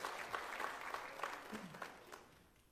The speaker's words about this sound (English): Can we give Jesus a hand clap of praise in this house today as we enter into the Word?